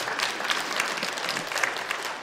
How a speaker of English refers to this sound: This is the Lord Jesus Christ. You can clap over that.